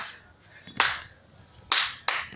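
Three sharp, loud claps from a crowd giving an 'Atama clap', landing together at uneven intervals over a low, steady background hiss, with no voices.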